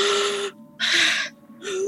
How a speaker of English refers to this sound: And she starts to breathe. Hey, everybody. What are you doing? What's with all the panting?